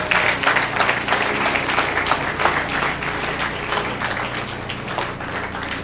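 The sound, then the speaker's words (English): A church audience claps steadily for several seconds during a sermon, a dense, even patter of many hands at a fairly loud level with no one speaking over it. “God, I thought you were going to clap for this one about your parents. Clap.”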